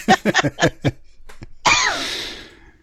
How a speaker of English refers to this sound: sounds like a dry cough. No, it's funny. I think it's electromagnetic.